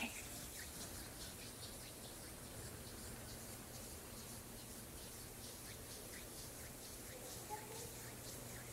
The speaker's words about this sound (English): And finally, rain.